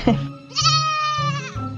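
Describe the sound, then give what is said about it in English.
A goat lets out one loud, wavering bleat lasting about a second, with a low rumbling sound underneath and no talking. “If you have goats that want to talk to us”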